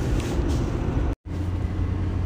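A truck engine drones steadily while driving home from elk hunting, a loud, continuous low rumble with road noise, broken once by a brief moment of silence partway through. No one speaks.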